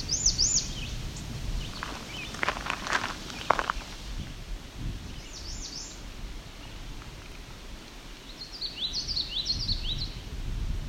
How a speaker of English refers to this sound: both a common yellow throat and an American red start. And the background red Iberia. That's the red start. That's the yellow throat.